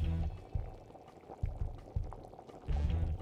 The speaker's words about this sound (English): No, it's actually lobster bisque, which will be sautéing with fresh herbs and butter.